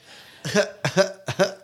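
A quick series of harsh, throaty coughs comes in three quick bursts, fairly loud, with no talking around them.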